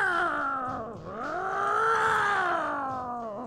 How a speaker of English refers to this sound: I mean, is that the horny cat siren that just went off there? What was that? That's how it started.